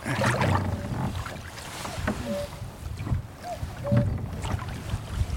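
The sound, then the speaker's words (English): A cuckoo on an island calls a few times, its soft two-note hoot thin and faint over steady wind buffeting and low watery, boat-like rumbling, heard while fly fishing. “So, listen to that cuckoo.”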